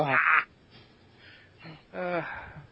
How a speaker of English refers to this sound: That was the pussiest cough I've ever heard. God damn, bro. It's just cold-blooded. What the fuck? Man, you even cough like a bitch.